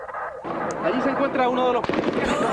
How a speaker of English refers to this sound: They start yelling and screaming, everybody down, you know, and they start shooting all over the place. But they're surprised by police. The gunmen open fire, spraying bullets at anything in their way.